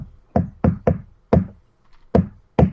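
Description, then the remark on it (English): Firm knocking on a door, with Negan at the door: a quick triple knock followed by a pause and then three more raps, solid with a hollow wooden thud, no voices. “And guess who's at the door?”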